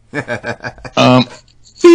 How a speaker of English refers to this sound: Beep. That wasn't a C. What is a C?